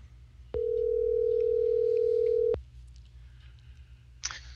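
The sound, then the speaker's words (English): A steady telephone dialing tone, as a phone is dialed live on the Truth News Network radio broadcast, holds for about two seconds, loud and clear over a low background hum, then cuts off abruptly, followed by a brief click. “I'm going to go ahead and dial this phone. You're going to bear with me. You're going to hear it dialing here in a second.”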